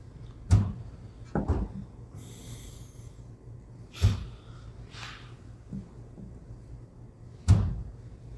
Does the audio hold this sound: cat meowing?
no